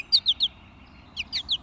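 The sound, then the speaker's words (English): American goldfinch calling: three quick, bright chirps, a short pause, then a faster run of five similar high notes, clear with no voices; the species' signature call, said to sound like someone saying "potato chip". “And while not part of the song, a singing American goldfinch might make the species' signature call, which sounds a bit like someone saying, "potato chip."”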